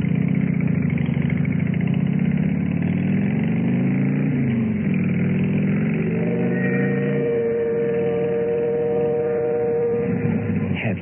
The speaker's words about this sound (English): Idea how I felt when I pulled up in front of the Lace House, helped her off the bike, and led her up to the front door, took out the key, unlocked and opened it.